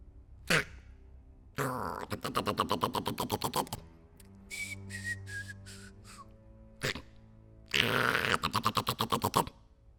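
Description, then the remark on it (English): A voice imitates a hare snoring in a cartoonish way as it sleeps in deep green grass on a hilltop: two raspy, rattling inhales, each followed by a high, falling whistle on the exhale, with short pauses in between. “He fell asleep in the deep green grass, snoring.”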